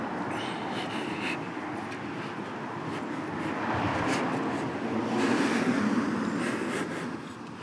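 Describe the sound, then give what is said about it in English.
A car rumbles steadily, its engine and road noise swelling briefly as it rolls up and settles to a stop at traffic lights on Bridge Lane, with no voices over it. “Somebody just pulled up at this one.”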